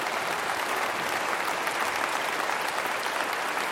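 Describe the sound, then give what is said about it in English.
Steady, dense applause from a crowd, a continuous wash of clapping that stays at an even, fairly loud level for several seconds without pause or voices on top. “Give them a round of applause. You can just stand to your feet as we get ready to leave.”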